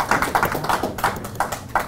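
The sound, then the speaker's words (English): A small group claps briefly for a business that opened nine days ago, a brisk, uneven patter of sharp hand slaps lasting a couple of seconds at moderate loudness, with no voices over it. “Let's get a little clap on that one, huh?”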